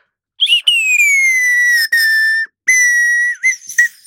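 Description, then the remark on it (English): A person whistles a birdlike song in imitation of a nightingale: long, high, steady notes broken by short gaps, with a few quick chirps and a falling slide near the end. “It's like there's a nightingale in the room”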